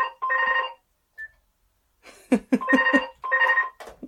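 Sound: telephone ringing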